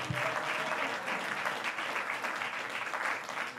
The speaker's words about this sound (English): Give Evangelist Stacy a big hand clap as she exits the building.